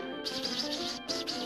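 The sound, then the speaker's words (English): Bright, high-pitched bird chirps flutter in quick repeated bursts over a steady background hum, moderately loud, with brief gaps between the trills. “Are you sure that's a bird? Yes, I'm sure it's a bird.”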